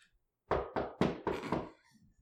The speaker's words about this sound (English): You pound on the door heavily, and you hear the echo of a knock inside, like as it kind of just echoes throughout the whole building. You can actually hear it like come out the windows, basically.